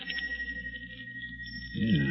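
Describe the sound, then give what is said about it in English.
A small bell hanging from the bed springs of a paralyzed man's bed rings in a steady, shimmering high tone that pulses gently throughout, with a low rumbling swell rising near the end. No one speaks. “And that's the bell. Hanging from the bed springs.”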